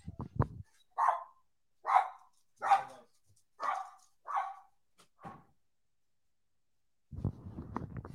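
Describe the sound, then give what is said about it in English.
Dogs bark in a steady run of about six sharp, evenly spaced barks, fairly loud, with a brief bit of talking just before and after; the dogs are shut in a room. “It's my dogs.”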